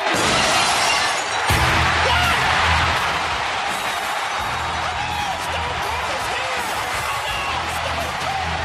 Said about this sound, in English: And then all of a sudden, you hear that glass break, and they blow the roof off the place. And this is what it sounded like.